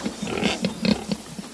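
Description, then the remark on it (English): Pink, muddy pigs in a pigsty grunting, a quick run of short, rough snorts and grunts in an irregular rhythm, fairly loud and with no voices over them. “Do you know that pigs roll in mud to keep cool?”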